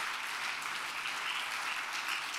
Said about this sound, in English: Give the Lord a good hand clap of praise tonight.